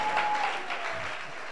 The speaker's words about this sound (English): Hallelujah. I need to hear you clapping for this God. Amen. Amen.